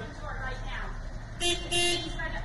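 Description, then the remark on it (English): Two short, loud car horn honks sound in quick succession, the second a little longer, over a steady background of street noise and faint voices. “Why is he honking?”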